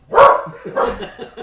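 animal, dogs barking

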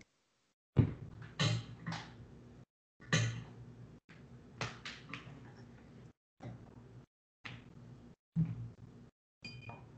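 household object, plugging

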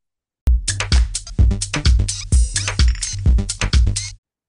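household object, champagne glasses clinking

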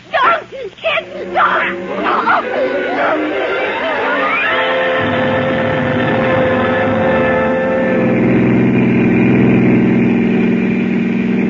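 vehicle, car engine

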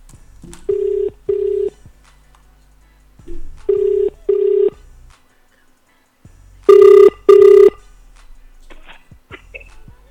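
signal or alarm, telephone dialing and ringing

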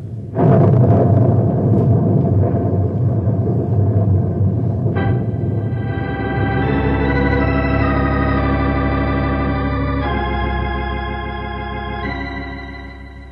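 nature, rain with thunder

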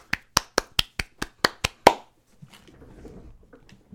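crowd, two hand claps

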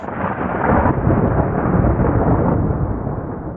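sound effect, thunderclap sound effect

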